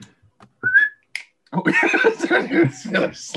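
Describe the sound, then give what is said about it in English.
A short, rising whistle, then a single sharp click, followed by a person talking or laughing loudly into the microphone. “Yeah, whistle and click. Go on, do your best.”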